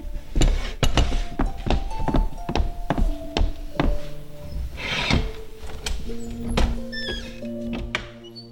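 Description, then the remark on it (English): A series of loud, hollow knocks on the wooden door of an inn, late on a cold night, coming in uneven bursts for several seconds, with sustained musical tones sounding quietly underneath. “Hark, what's that? They can't come in. I don't care who they are. We have no room. Go to the door.”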